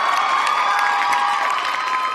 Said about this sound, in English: I need a hand clap for that one.